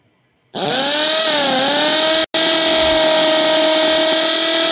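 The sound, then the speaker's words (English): An old electric drill starts abruptly and runs with a loud, steady motor whine, its pitch dipping briefly before settling, then cutting out for an instant and whirring on. “It is an old electric drill.”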